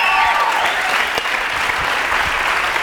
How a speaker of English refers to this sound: Oh, applaud first. It's okay. It's okay. Just keep going.